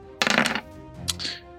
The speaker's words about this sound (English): And another 18 on the dice. Two 18s in a row.